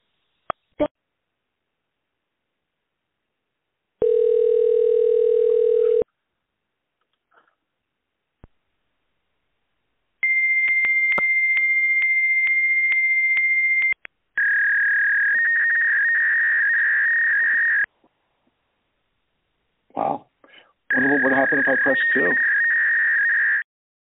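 Over a narrow, tinny phone line, a call to a practice's phone number listed on its website brings a low steady beep. This gives way to a long high-pitched tone, then harsh warbling fax-machine screeches in several loud bursts with short gaps between.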